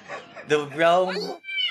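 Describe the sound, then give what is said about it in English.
A person mimics a cat with a loud, drawn-out, rising and falling meow, followed by a brief higher-pitched vocal squeak at the end. “Meow!”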